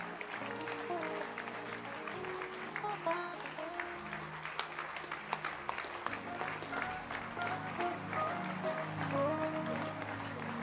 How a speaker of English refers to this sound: Clap for them. Please don't stop clapping. Encourage them. Keep clapping.